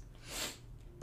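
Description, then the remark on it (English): A stifled, breathy sneeze attempt builds as a soft airy hiss, peaks, and fades, then ends in a brief sharper burst. Fairly quiet, with no talking. “I gotta sneeze, but it won't come out.”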